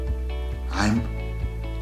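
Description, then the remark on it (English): A single sneeze bursts out partway through, a short, loud, breathy blast with a rising voiced edge, over a steady low background hum with no talking. “Bless you.”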